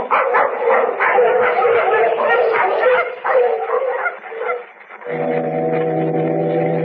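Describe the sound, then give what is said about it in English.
A pack of sled dogs barks and yips excitedly in a dense, overlapping chorus for several seconds, then a deep, steady foghorn blast cuts in and drowns them out. “Come on, we'll get the dogs on.”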